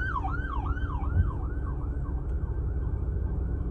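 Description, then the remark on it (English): An emergency vehicle siren wails in a fast, repeating up-and-down sweep, fairly loud over a steady rumble of traffic noise, with no one talking. “Think about this, these sirens that are going off.”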